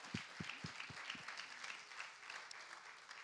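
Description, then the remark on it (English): A church audience claps together in sustained, dense applause for their pastor, with a few sharp low thumps early on, then steady crackling hand claps at a fairly quiet level with no voices. “If you love your pastor, would you clap for them and appreciate them?”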